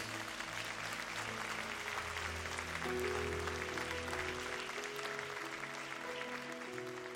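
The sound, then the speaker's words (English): A large church audience, standing at the end of a sermon, applauds Jesus steadily and loudly for several seconds, a dense continuous wash of clapping with sustained keyboard chords playing underneath. “And as you stand, if this word has been a help to you, can you just give Jesus the best round of applause you've got?”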